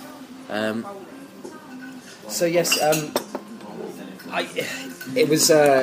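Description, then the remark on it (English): Teacups and saucers clink and rattle repeatedly as tea and coffee are served and set down, with voices talking over and between the bright china knocks. “So our tea and coffee has arrived.”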